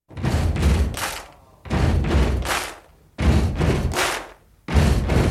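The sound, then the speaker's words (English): Loud, rhythmic stomping and clapping repeats in a steady pattern: heavy low thuds from feet followed by a sharp hand clap, with the group sounding four times and no voices. “So the claps there are the pop, those are kind of the snare drum, and the kick drum, the thump, is being simulated by stomps, by feet on the ground, because it's a lower pitch, it sounds more like a kick drum.”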